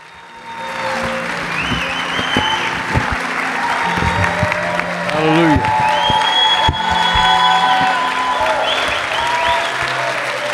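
A standing audience at Living Stones church breaks into sustained applause with scattered cheers and whoops, a dense, steady wash of clapping that holds strong for about ten seconds, with a few voices calling out over it.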